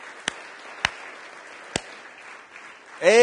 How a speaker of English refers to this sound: Can you put your hands together? And let's give the Lord a clap offering. Hallelujah.